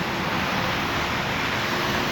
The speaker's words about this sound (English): It's a little rainy today. You might hear the cars a little differently.